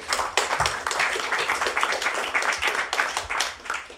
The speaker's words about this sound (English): Thanks very much. Applause for ….